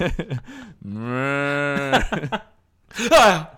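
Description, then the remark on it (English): A man moos like a cow in his sleep: a long, drawn-out moo lasting about a second, fairly loud, preceded by brief vocal sounds and followed by a short breathy noise. “He's mooing in his sleep.”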